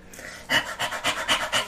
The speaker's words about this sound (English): if you hear panting, jumping, click-clacking. That's just Austin. My dog is going bananas right now